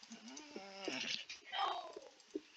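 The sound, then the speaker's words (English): A female pet dog named Ridgie gives a brief, high-pitched whine lasting under a second, followed by scattered clicks and muffled voice-like sounds. “Ridges, stop whining, good girl.”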